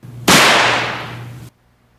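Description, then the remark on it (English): During a phone call to the Venetian Resort Las Vegas about a hotel room fire alarm, a single loud firework blast erupts suddenly, its harsh hiss fading over about a second before cutting off abruptly, with a steady low hum underneath and no voices. “We're getting our fireworks on, you know?”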